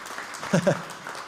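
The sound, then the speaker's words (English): A church audience on Vision Sunday claps steadily in a dense, even wash of applause, with a brief vocal whoop rising above it partway through. “I really, yeah, we can clap that.”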